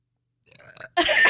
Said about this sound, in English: I literally burped at the same time. Mine was just quieter.